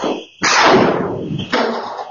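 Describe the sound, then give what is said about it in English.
FBI agents raid a home, caught on a security camera: a sharp, loud flashbang blast with a long crackling decay, followed about a second later by a second heavy crash as agents smash through the front door. A faint high ringing tone precedes the blast. “On the security camera, in the moments before the agents crashed through the front door, all that's visible is a group of shadows moving at the entrance.”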